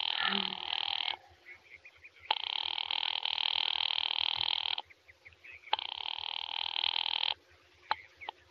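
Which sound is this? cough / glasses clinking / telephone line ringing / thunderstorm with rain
telephone line ringing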